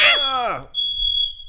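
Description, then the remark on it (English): A fire alarm in a building sounds a loud, steady, high-pitched electronic tone that starts partway through and holds to the end, right after a voice speaks briefly. “We well, set that, a fire alarm.”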